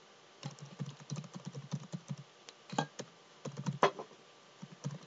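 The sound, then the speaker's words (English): Fast, uneven clicking of keys on a computer keyboard as someone types a reply, a steady burst of typing with a few louder, sharper keystrokes standing out, with no voices. “And he didn't remove it from play until we finished typing him back.”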